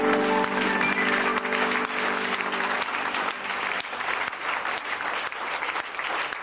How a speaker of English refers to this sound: Praise the Lord. Let's give Jesus a big clap offering.